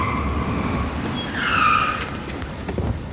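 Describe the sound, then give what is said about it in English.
A car pulls in behind a man, its engine rumbling steadily while a brief squeal of tires or brakes rises midway, then settles into a low idle with a few soft thumps. “Car pulling in behind him.”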